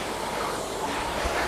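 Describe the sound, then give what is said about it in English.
A steady, loud rushing whir of a rowing machine's flywheel or water wheel spinning hard during a rowing workout fills the moment with a continuous breathy whoosh and no voices. “Listen to the flywheel or water wheel scream.”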